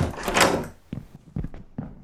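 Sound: door opening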